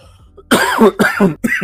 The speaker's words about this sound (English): Excuse me as I cough.